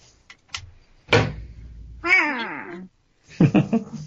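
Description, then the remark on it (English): A single harsh, drawn-out, menacing crow caw that slides downward in pitch, loud, from a crow perched on top of a canyon, following a dull thump and scrape, with a few short clattering knocks after it. “But you can feel the wind sort of beating down on you as it goes up, and it alights on top of one of the canyons and kind of tilts its head, looks at you, realizing that it's missed its opportunity, and sort of gives a menacing caw in your direction.”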